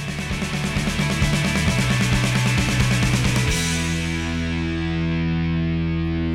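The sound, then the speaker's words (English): Loud rock intro opening the first track of an album: rapid, pounding drums under thick distorted guitar, which breaks off into a single sustained, ringing guitar chord that slowly decays. No voices. “opens up basically with this huge drum part on the, you know, he's pounding that intro yeah.”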